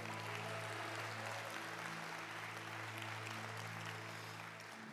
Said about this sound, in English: Let's give the Lord a great big hand clap.